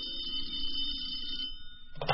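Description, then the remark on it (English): A telephone rings with a steady, high, buzzing tone that holds for over a second, followed by a brief clattery burst near the end, over a low background hum. “So when the phone rang, he wasn't surprised by what he heard.”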